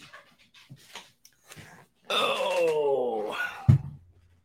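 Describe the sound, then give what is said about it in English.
A dog whines in a long, drawn-out, wavering cry lasting about two seconds, wanting to be let out because there are people outside, preceded by faint snuffling and shuffling, and ending with a short thump. The whine is fairly loud. “Y'all look at my dog. He's like, I want out. Let me out. Let me out.”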